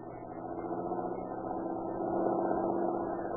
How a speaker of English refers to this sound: Say, here comes a car that looks like the boys Katzenberger's looking for. Think I'll stop them.